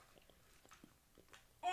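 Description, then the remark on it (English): Quiet munching on Bilar gummy candy, with soft, irregular chewing squishes and clicks, then a sudden louder burst of sound right at the end. “You're just like munching this giant.”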